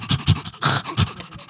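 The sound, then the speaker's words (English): A dog named Dusty pants rapidly and excitedly while jumping up at a man, a quick run of breathy huffs with one longer, harsher breath in the middle, fairly loud with no talking. “Dusty jumps up at him, panting excitedly.”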